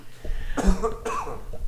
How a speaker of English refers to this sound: He just took your breath. Yes, he did. He made me cough.